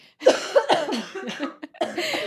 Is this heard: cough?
yes